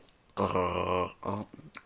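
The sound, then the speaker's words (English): A voice imitates a creature's growl by gargling and chattering the teeth, holding a buzzing, gargled tone for most of a second, then a shorter second burst followed by a few quick teeth-chattering clicks. “You gotta chatter your teeth at the same time.”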